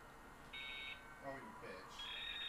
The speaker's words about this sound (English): This is dial-up. How us people used to connect to the goddamn internet.